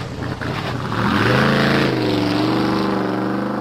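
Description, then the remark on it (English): A car engine revs up loudly and accelerates, its pitch climbing steeply then holding a strong, steady roar, continuous, with no voices. “So the duck jumped on a fast car.”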